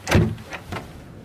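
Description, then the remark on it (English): A door handle is pressed down with a solid clunk, followed by two lighter clicks as the latch releases and the door swings open, with no talking. “Door handle down on your left.”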